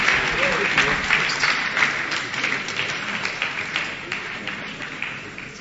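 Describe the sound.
A standing crowd claps steadily for several seconds, dense overlapping applause with a faint murmur of voices underneath.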